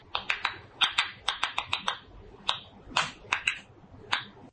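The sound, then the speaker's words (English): A tomato plant, stressed as a tomato is being pulled from it, gives off a quick, irregular series of sharp popping clicks, about twenty crisp snaps over a few seconds, some bunched in fast pairs, with no voices. “This is what a tomato plant sounds like as it's stressed out, as a tomato is being pulled from the plant.”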